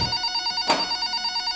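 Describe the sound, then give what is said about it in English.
A telephone bell rings with a bright, rapidly pulsing metallic trill that holds steady throughout, briefly interrupted by a short clattering burst in the middle. No one speaks. “It was Joshua, the security guard from the building entrance, on the phone.”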